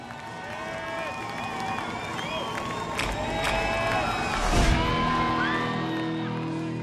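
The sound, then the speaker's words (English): A crowd cheers and applauds without pause, with high whoops and whistles rising above the steady clapping and a brief louder swell before it settles again. “And a round of applause to Jen Fairbanks from eLearning Brothers for this episode.”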